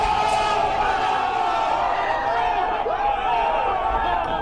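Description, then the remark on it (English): A crowd cheers and applauds to welcome a guest onto a show, in a steady, dense roar of clapping and voices, with shouts and whoops rising over the noise, loud and sustained for several seconds. “Hey, give him the applause.”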